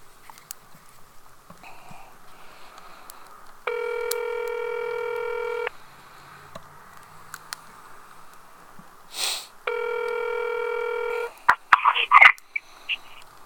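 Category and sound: signal or alarm, telephone keypad dialing tones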